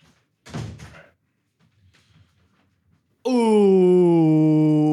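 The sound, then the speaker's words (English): A door is pushed shut with one heavy thud, followed by quiet shuffling; then a loud, steady buzzing tone starts abruptly and holds. “Ooh, is my door open?”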